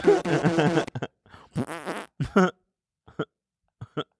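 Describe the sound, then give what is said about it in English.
A voice blurts a string of imitation fart noises: one long buzzy raspberry, then a wobbling drawn-out one and several short sputtering pops with pauses between, fairly loud. “The 600 farts, man. It's so genius.”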